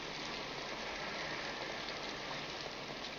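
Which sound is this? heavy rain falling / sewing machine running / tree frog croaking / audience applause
heavy rain falling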